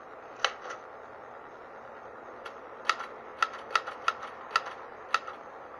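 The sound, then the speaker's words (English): Sharp mechanical key strikes of an old manual, non-electric typewriter, about nine clacks in irregular bursts with short pauses, fairly crisp over a faint low hum, with no voices. “The typewriter said hello in print. It's an old hand type, non-electric.”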